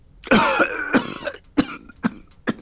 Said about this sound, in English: He coughed with a mighty struggle for breath.